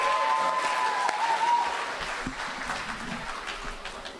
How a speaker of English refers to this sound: Anyway, well, let's give George a big round of applause.